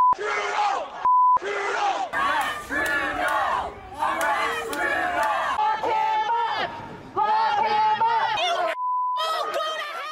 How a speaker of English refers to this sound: There were ugly moments, gravel thrown by vaccine opponents and others. Anti-vaccine protesters yelling and swearing.